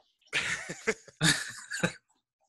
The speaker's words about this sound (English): If you got a cough, can you leave the room?